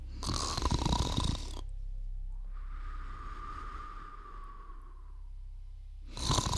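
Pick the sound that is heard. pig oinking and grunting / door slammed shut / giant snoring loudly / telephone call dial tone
giant snoring loudly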